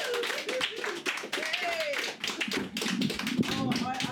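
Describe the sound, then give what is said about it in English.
Thin, scattered applause from a small audience in Edinburgh greeting a performer called to the stage, a handful of light claps patting unevenly for a few seconds, with voices talking over and around them. “I love that, like, kind of slight little clap.”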